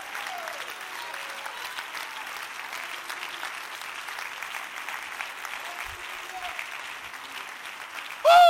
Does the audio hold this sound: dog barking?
no